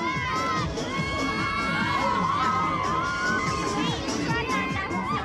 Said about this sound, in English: They're all laughing and screaming, except for one poor girl, who's holding her hand over her mouth. She's green.